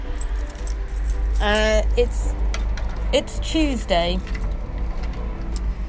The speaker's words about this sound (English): Locking. I'm trying to lock my front door with my left hand, which is it's never going to work, is it? Right, there we go.